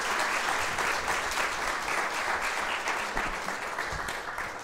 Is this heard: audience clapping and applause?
yes